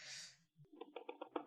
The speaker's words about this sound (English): So let me type our information over here. Geek Squad, customer support. Why are you typing that?